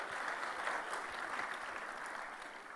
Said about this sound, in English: Thank you very much. Give a round of applause for them.